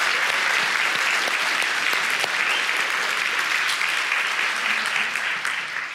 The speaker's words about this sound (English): I'm so thankful for our youth worship team. Y'all did such a great job. Y'all give them another round of applause.